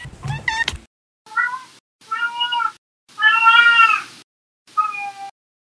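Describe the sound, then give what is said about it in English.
A cat, Winston, meows four times in close succession, each cry loud with short silences between, the third drawn out longest. A brief burst of other sound comes just before the meows. “sometimes my cat Winston joins me.”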